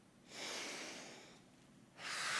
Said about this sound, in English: Just take a deep breath.